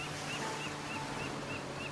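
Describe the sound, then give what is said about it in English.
Waves lap steadily against the shore of the Sea of Galilee, a lake, in a continuous, soft wash of water, with faint, brief high chirps recurring in the background. “When the boy first saw Jesus, he was near a shore of a lake called the Sea of Galilee.”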